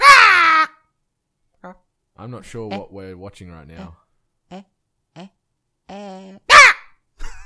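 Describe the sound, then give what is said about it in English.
A person imitates a chicken with a loud, harsh, high squawk to control a chicken character in a voice-controlled video game, where louder noises make it jump higher, then talks for a while before letting out another short, sharp squawk near the end. “Well, I like making the chicken noise.”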